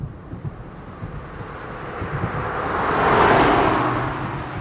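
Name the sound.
car driving on road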